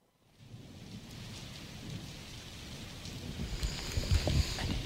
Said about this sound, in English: Oh, soothing rain back? Sound effect. It's not raining.